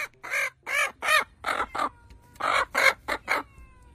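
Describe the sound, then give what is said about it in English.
An Easter Egger hen clucks while being tickled, in a rapid run of about ten short, throaty bursts with brief gaps between them, clear and fairly loud, with no one talking. “It's a good looking chicken.”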